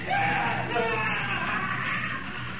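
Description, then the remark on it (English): A man in the forest beyond a clearing imitates the anguished screams of a white captive under torture, a drawn-out, wavering wail that carries steadily for a few seconds with no talking, over a faint background hum. “An Indian in the forest beyond your clearing. He is imitating the screams of a white captive under torture.”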